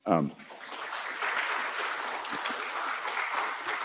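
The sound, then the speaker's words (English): A brief voice at the start gives way to an audience clapping, a dense, steady wash of many hands that holds at an even, fairly loud level for several seconds. “Y'all keep clapping, us politicians just keep talking.”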